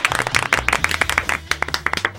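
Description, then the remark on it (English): A small group claps for comedian Jeff Foxworthy on a Mix 105.1 show in sharp, separate bursts, a quick, deliberately practised staccato pattern of distinct claps rather than a smooth wash of applause, with a low hum underneath. “What a crowd. And they love you. With their staccato clapping.”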